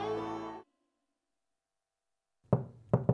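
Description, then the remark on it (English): A sustained tone cuts off into silence, then three sharp knocks on a door sound. The first knock stands alone and the last two come in quick succession. “Could this be misfortune knocking on your door?”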